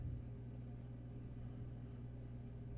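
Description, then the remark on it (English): A video game ghost car's engine hums at a steady, low pitch throughout, a continuous mechanical drone with no clear swell or fade, fairly loud and alone without any talking. “Ghost car.”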